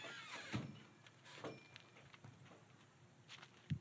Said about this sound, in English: He just go out the screen door.